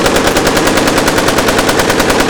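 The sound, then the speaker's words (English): A loud, sustained burst of rapid automatic gunfire that kills two guards, shots cracking in a fast, steady rhythm for about two seconds with no voices over it. “You made me kill those two people.”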